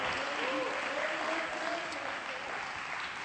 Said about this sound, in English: Oh, you ought to be clapping your hands because you got in. You got in. You got in. You were brought in.